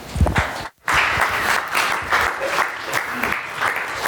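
An audience applauds steadily to welcome a speaker, a dense wash of many hands clapping at once, with a brief silent break near the start before the clapping resumes at full strength and carries on.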